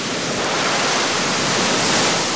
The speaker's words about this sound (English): There's a huge wave that comes, I think it's almost 6 feet high, that comes every couple of minutes.